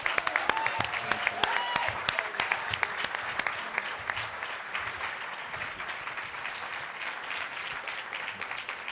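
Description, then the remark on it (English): An audience claps steadily for several seconds, a dense crackle of many hands with a few sharper individual claps standing out early on, the applause holding fairly even throughout without any voices. “So please give a round of applause to him.”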